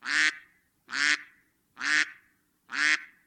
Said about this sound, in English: Selected. Duck number one. Here's a duck.